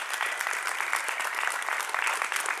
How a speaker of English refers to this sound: All right, so another round of applause for our authors tonight. I think they did an awesome job.